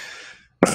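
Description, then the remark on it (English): A single sharp sneeze bursts out loudly right after a fading tone and a moment of near silence. “Bless you. Bless you.”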